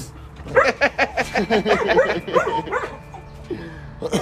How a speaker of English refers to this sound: Oh, there's also dogs outside. Hey. I'd be surrounded by 1, 2, 3, 4 dogs.